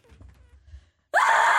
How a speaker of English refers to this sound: Do you want to have a little scream just to deal with the stress? Go on, back off the mic there. Have a little scream.